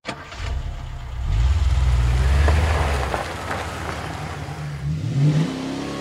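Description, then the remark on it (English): A brand new blue Mustang's V6 engine revs up loud, its deep drone climbing and dropping through several gear changes as it accelerates and downshifts on winding high desert roads near Palmdale, 70 miles north of Los Angeles, with no voices. “She loved that car, loved downshifting its V6 engine on the winding high desert roads near their home in Palmdale, 70 miles north of L.A.”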